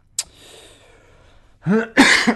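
A person coughs: a sharp short cough, a pause with faint breathing, then a couple of harsh, raspy coughs in quick succession.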